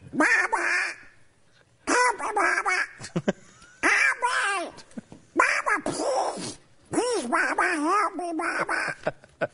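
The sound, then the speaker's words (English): A person loudly imitates a duck in distress, letting out bursts of frantic, nasal quacks in several separate runs with short pauses between them. “One of my kids' the favorite things is they do this duck in distress thing at home every once in a while, just because they like it.”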